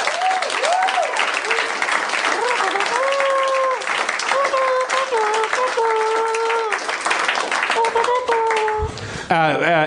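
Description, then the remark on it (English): A crowd applauds loudly and steadily for about ten seconds, with whoops and sustained cheering voices rising over the dense clapping, ending in a brief burst of shouting. “Yeah, applause.”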